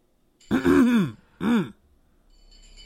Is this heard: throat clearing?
yes